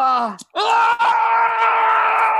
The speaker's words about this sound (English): Screaming's not going to make it worse.